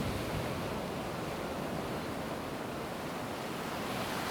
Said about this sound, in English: Standing there, water lapping at my ankles, I felt suddenly washed clean.